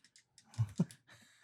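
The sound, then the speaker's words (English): A handheld clicker snaps several times in quick succession, a few light ticks followed by two firmer, fuller clicks, fairly quiet. “Oh, it's a clicker.”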